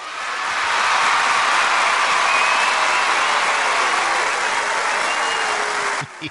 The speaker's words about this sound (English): Hello, people out there in the audience, live. You can cheer or something. I might add a sound effect or something here. He does that sometimes.